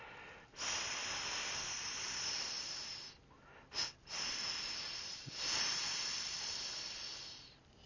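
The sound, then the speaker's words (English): A snake hisses in the woods in long, steady breathy bursts, broken by a few short pauses and one quick sharp puff, fairly loud with no voices around it. “As I sat on a log in the woods, I heard a song unlike any I'd ever heard before.”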